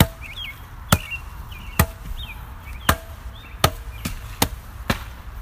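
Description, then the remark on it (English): Sharp hand slaps ring out about seven times at an uneven pace, crisp, while faint birds chirp in the background. No one speaks. “Maybe why don't you suck that down some slapping.”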